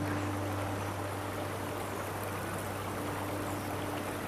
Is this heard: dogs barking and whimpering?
no